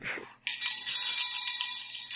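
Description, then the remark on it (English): Bright, continuous bell ringing, a sound effect marking the start of a news segment, starts abruptly after a brief soft noise, with shimmering high harmonic tones sustained at steady loudness, prominent with no voices. “Fuck, I'd laugh if everyone unsubscribed on the podcast just for the bells.”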